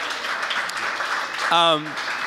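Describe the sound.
Steady, dense audience applause fills the whole stretch, with a single short voiced cheer rising above the clapping partway through.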